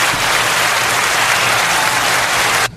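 A loud, steady burst of crowd applause, dense clapping with cheering mixed in, sustained for a few seconds before cutting off abruptly at the end.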